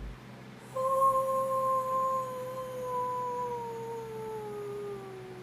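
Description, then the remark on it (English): A person imitates a wolf with one long, steady howl that holds its pitch and then slowly slides downward over several seconds. It is clear, with no talking. “Howl for the people”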